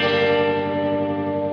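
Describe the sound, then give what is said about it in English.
A sustained electric guitar chord, with tremolo placed before the reverb, rings out through heavy reverb, its tail holding steady without any pulsing, fairly loud, with no voices. “you have the tremolo, you hear the tremolo when you're playing, but not at the reverb tail.”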